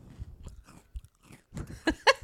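Wet chewing and crunching of a salted cream-filled cookie into the microphone, irregular bites building to a few louder crunches near the end, with no talking.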